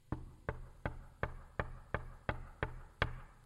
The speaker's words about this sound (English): A knock on that door.